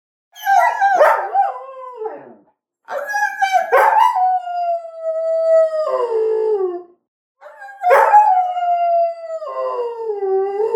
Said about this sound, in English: And now a special guest. And you guessed it, it's Gunner! Gunner, give us a lovely howl.